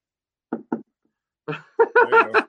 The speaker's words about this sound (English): I just knocked on the table as I'm talking.